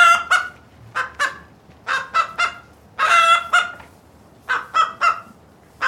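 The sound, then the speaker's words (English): Chickens cluck and squawk in quick clusters of short, loud calls, with one longer drawn-out call in the middle and brief pauses between bursts; no one speaks. “Just one of the other things I like about having chickens.”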